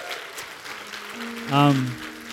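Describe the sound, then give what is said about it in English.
Steady applause from a standing church audience for a panel fills the whole stretch with a dense patter of clapping, and midway a brief, louder sustained voiced tone rises over it before fading back into the clapping. “Shall we all stand and let's give our panelists one more round of applause.”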